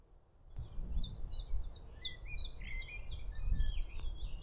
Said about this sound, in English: I can hear two birds singing clearly at the moment. There's a blackbird, which is a fluty one in the background, and you can hear chiff-chaff going chiff-chaff, chiff-chaff, chiff-chaff.